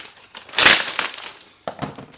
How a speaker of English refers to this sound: So, I've got the radio here. I have not even opened it yet, so I was gonna open it and check it out with you guys. Let me cut this open here. Probably because it came from China. It was wrapped in a giant plastic bag.